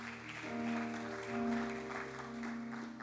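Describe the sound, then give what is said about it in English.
An audience applauds in a steady, dense patter of clapping that holds for several seconds, over sustained organ or keyboard chords that shift once partway through. “Yeah, I mean, that passage right there just deserves an applause.”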